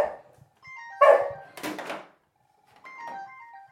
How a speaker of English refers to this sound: You got telephone call. I've got a telephone. And the doggy doesn't like the telephone.